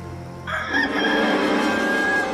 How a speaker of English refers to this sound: And at once, a rooster crowed.